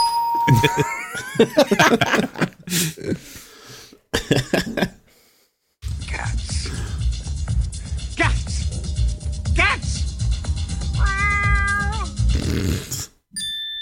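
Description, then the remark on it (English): A cat meows several times up close, its rising, wavering cries loud and clear, followed by a stretch of dense background noise with more meow-like calls cutting through. “Cats. Yeah, sorry, Paul. You're talking about your cat.”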